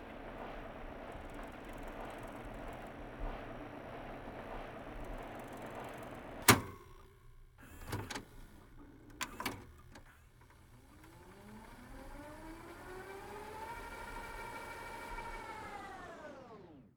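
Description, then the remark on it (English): A few mechanical clicks, like buttons being pressed, then a cassette tape whirring as it rewinds or fast-forwards, its steady whine gliding up in pitch over a soft hiss, with no voices. “The tape being either rewound or fast-forward signifies the end of the … narrative.”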